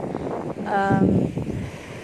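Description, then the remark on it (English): Blustery wind rumbles across the microphone over a steady wash of surf at Pantai Cahaya Bulan beach, with a brief murmur of a voice partway through. “Yeah, actually, I forgot to tell what's the name of this beach.”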